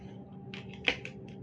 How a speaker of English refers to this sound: Don't you guys enjoy that noise that the pencil sharpener makes? You do? Well, then you are crazy.